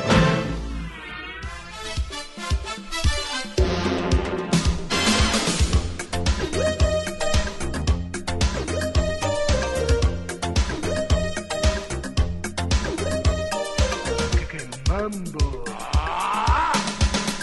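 Synthesized car engine sounds from the retro racing video game Pole Position, a steady electronic whine with rising and falling pitch, loud and continuous, mixed with bright beeping tones and squealing bursts.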